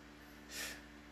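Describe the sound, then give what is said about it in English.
A cat gives one short, breathy sniff at a screen, a soft puff of air rising and fading in under a second against a quiet, steady background hum. “You just gonna sniff the screen?”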